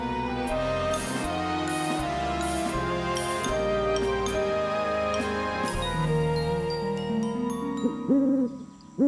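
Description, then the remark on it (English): Owls hoot over and over, their low, hollow calls layered on a dense, steady tonal backdrop that stays fairly loud the whole time, with no voices. “When the seven young owls set out, they sat every now and then on the branches of old trees and never went far at one time.”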